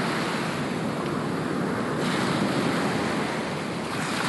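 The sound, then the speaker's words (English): Ocean waves wash against the shore in a loud, continuous, steady roar, with a little wind noise mixed in and no voices. “So, in your left ear, if you've got your headphones oriented the way I have them, you're hearing the ocean, and then on the right is the roadside, but I think the ocean is probably overpowering everything else at this point.”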